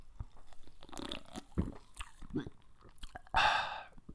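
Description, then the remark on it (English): Quiet mouth sounds of someone sipping a drink from a freshly opened can: soft wet clicks and smacks, then a louder, longer slurping sip near the end. No talking. “And now I'm gonna take a little sip.”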